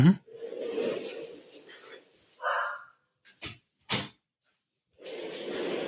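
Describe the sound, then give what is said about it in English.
A door is pushed shut, giving two sharp knocks about half a second apart, with a brief bark from the dog Mulder just before and low rustling noise around it. “But it's, hang on, let me close the door a little bit.”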